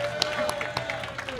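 A short burst of applause: a steady wash of many hands clapping at a moderate level, with scattered sharper claps and some crowd murmur mixed in.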